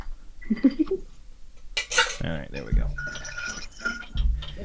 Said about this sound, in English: Is when I would add the ice to the glass and to the cocktail mixer. Because at this point, the cocktail is ready to be made, so we're going to ice the glass and the cocktail mixer at the same time. It's a metal.